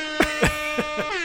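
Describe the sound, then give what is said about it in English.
A loud air horn sound effect blares with a steady brassy tone, punctuated by four sharp bursts in quick succession, with no voices. “Where's the air horn one?”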